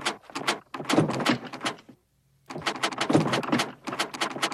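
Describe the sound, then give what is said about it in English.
A little peg-leg bat rattles and bumps at a door, trying to get in, in two bursts of rapid, clattering knocks separated by a brief silence. Fairly loud, with no talking. “All right, there's a little peg leg bat trying to get in the door here.”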